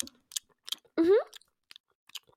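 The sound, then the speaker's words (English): Crisp crunching bites of a leaf being chewed by a rodent that grabbed it from a rain gutter, in several short irregular bursts, with a brief rising squeaky call partway through. “And after every sentence, despite Mac not listening, she will zip up to the rain gutter, grab a leaf to chew on, and just come back.”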